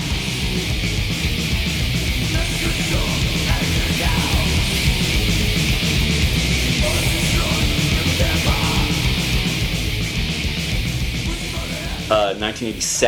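A loud, dense early death metal song with heavily distorted guitars, pounding rapid drums and harsh growled vocals, played continuously at full intensity before briefly shifting near the end.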